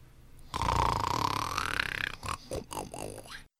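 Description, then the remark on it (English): A loud, raspy snoring sound: one long rattling snore of about a second and a half, then several shorter snorting bursts, with no talking. “Gov might be perceived as a snoring sound.”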